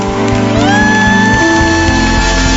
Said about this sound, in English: So before you take your seat, I want us to clap specially for our Father, the Prophet.